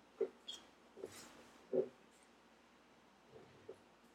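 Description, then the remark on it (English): A voice imitates a whimper with a handful of short, soft nasal whines and snuffles, spaced irregularly over a few seconds, quiet, with no speech. “Can you hear him whimper?”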